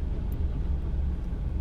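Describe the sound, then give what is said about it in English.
A large backhoe's heavy engine rumbles steadily nearby as it scoops material, a deep continuous low drone with a faint mechanical texture and no pauses or voices. “There's also a giant backhoe next to me, and he's scooping stuff.”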